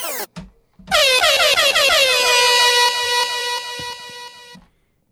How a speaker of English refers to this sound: Rewind. Rewind. Air horn.